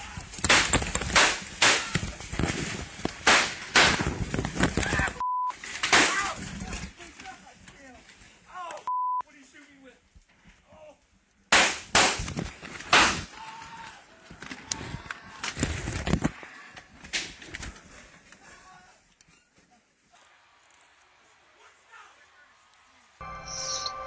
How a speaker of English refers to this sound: The room turned to panic, with smoke in the air and everybody screaming, a horrifying scene with the sound of the gun popping off, glass breaking, bodies bursting, and blood everywhere. Some thought it was balloons popping or a cap gun.